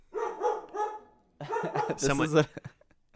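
May, a dog, lets out a quick run of three yappy barks, then a longer burst of excited, whiny barking and yelps before trailing off into a few soft sounds.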